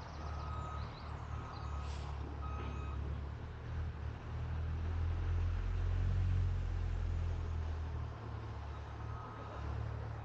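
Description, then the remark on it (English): A bin lorry's reversing alarm sounds a few spaced, steady beeps over a heavy diesel engine rumble that swells and fades, with general traffic noise throughout, on the Beara Peninsula in County Cork, Ireland. “I suspect that all you can hear is the bin lorry.”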